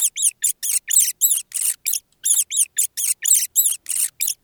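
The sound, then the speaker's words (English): A rat squeaking in a rapid, steady run of about fifteen shrill, high-pitched chirps, each short and sharply repeated with brief gaps, and no voices over it. “That is a rat.”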